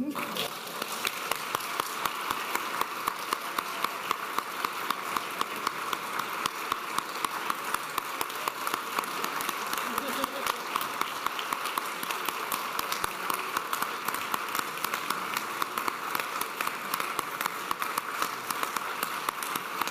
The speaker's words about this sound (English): It appears that this congregation rising to its feet and cheering for you is a habit that we are developing.